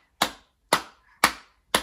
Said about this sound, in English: Okay, let's try number four. So this time, start by clapping your hands. Nice and simple. Can you clap your hands?